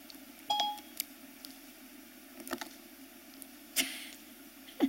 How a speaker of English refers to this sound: My phone thought I said Siri.